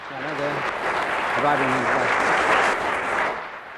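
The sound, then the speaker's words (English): Steady, dense audience applause at the end of a panel game round fills nearly four seconds, a broad crackling wash of many hands clapping, with a couple of brief voiced calls or cheers rising above it early on. “And I think we should have some applause for”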